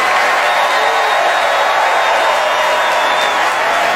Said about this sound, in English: Meryl, stand up if you would. Everybody, please join me in giving Meryl Streep a totally undeserved round of applause, will you?